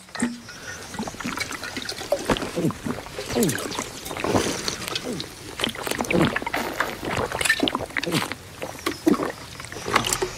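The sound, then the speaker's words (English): Wet gulping as a man chugs water, with rapid swallows and sloshing liquid repeating steadily for about ten seconds without a pause. “The sound design, everything, the way he's just chugging it and gulping it.”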